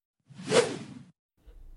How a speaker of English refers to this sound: Royalty-free swoosh. I'll play it again. Let's see if it's a swish or a swoosh.